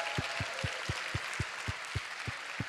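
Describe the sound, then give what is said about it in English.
A crowd at a Christmas gathering applauds and cheers for the team who put the venue together, a dense, steady wash of noise with regular low thumps beating through it at an even pace, like stomping feet. “Can we have a big cheer for the team who put this together?”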